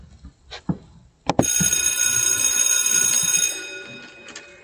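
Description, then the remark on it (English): An electric bell rings loudly and continuously for about two seconds, a bright, metallic, rattling clang that then fades away. A few soft knocks come just before it starts. “Now, when you hear the bell, all right, Brother Oscar, when you hear the bell, you know class is in, and it's time for our chat.”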